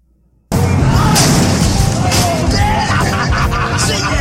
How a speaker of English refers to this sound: That's super loud. Is that when they're smashing mailboxes? It is when they're smashing mailboxes.